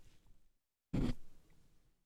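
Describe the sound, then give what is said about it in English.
A single short, forceful nose blow: a loud, breathy burst lasting about a third of a second, trailing off into soft rustling noise. “Sorry, I got to blow my nose.”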